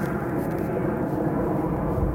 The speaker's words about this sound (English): there goes a low plane. Hear that?